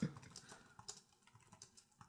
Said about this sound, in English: So you're probably hearing me type egg.